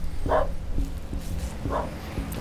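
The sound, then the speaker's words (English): A dog barks twice in a run-down backyard, short sharp woofs about a second and a half apart, over a steady low outdoor rumble with no one talking. “Hi, dog.”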